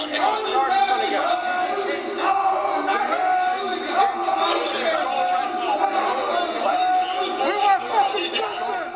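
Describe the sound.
A dense mob of rioters inside the Capitol shouts and yells over one another as officer Goodman leads them away from an entrance to the chamber toward a line of police, a loud, continuous roar of overlapping voices with occasional louder bellows rising out of the din, unbroken throughout.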